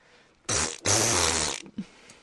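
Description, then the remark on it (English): A loud armpit fart imitation: two broad, sputtering blasts back to back, the second longer and wetter, with quiet background noise before and after. “Armpit fart. Doesn't count if you do it with your mouth.”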